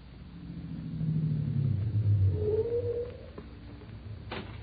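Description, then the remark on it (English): A car engine rumbles low and steady, its pitch rising and falling as the vehicle rolls in and slows, with no one speaking. “Take the car around back to the garage, Danny.”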